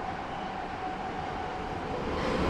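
A steady, dense rumble of a Prague metro train running through a tunnel, with a faint high tonal whine riding over the continuous roar, no voices.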